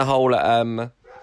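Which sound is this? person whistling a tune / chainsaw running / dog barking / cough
dog barking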